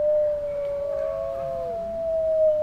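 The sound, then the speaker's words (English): Several wolves howl together at night in a long, steady chorus, one sustained tone holding while another voice slides downward beneath it, with no talking. “They live in family groups of up to 12 animals, howling together, and it establishes cohesion.”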